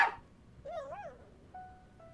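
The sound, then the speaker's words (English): A dog, Verdell, gives a short, sharp bark, then a wavering, high-pitched whine, followed by a thin, steady tone. The sounds are fairly quiet, with no one talking. “Stupid dog.”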